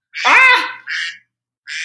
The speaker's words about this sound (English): What is quacking? Why is my phone on? Why is your phone quacking? Because that's a great ringtone.